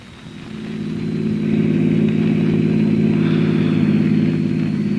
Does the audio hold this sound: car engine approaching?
yes